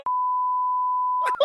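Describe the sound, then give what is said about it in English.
A single long electronic beep, a steady high-pitched tone that holds for over a second at even loudness, cut off as someone starts speaking near the end. “Some beeps over.”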